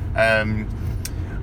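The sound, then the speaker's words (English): Steady low rumble of a car cabin on the move as the driver heads to work early on a dark winter morning, with a brief voiced tone and a short click-like noise over the constant road hum. “you are still very much on the hands-free”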